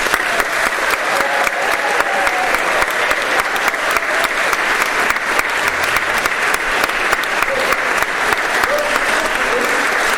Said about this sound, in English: You were all excellent this afternoon. We need a big little clap. Yes.